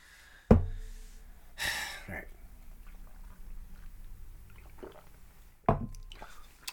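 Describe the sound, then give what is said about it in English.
Quiet gulping as someone chugs the rest of a can of Mom Water hard seltzer, between a sharp can knock at the start and another near the end, with a loud breathy gasp after the first swallows. “All right, now that we've cooled a second, we got to chug the rest of this mom water and see if it has more of a vodka taste.”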